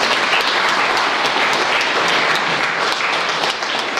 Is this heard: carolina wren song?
no